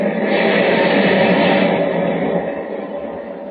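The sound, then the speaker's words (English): A heavy wave crashes over the battered deck of the ship Clara M. in a storm on a turbulent sea, a loud, continuous roar of rushing water that holds steady for a few seconds and then slowly eases off. No voices. “As the thunderous wave crashes down on the battered decks of the Clara M., Superman, returning from Metropolis, flies low over the turbulent sea.”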